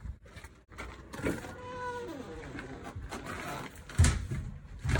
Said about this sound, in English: This door's a bit squeaky, but it opens and closes really easily, and the lock slides in and out too, so that's a pass.